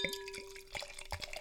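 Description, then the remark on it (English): Medium golden sparkling wine with a slight amber tint is poured into a glass, a soft gurgling stream with a crackly fizz of bubbles and a faint ringing tone, no voices, lasting about a second and a half. “Right, let's get some in the glass.”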